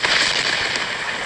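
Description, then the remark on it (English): A lightning strike in rainy weather in Ireland lets out a loud, harsh crackling thunder crack that rips on for over a second with a dense, hissing roar and a few sharper snaps, with no voices. “Dude, a lightning bolt just fucking struck behind your head.”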